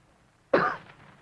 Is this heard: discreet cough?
yes